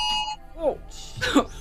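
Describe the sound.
A voice mimics an alarm with a short, steady, high beeping tone, followed by brief vocal sounds and exclamations, fairly loud.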